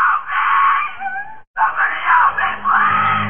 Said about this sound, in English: It is what I imagine people think of as a blood-curdling scream. It is worse than that.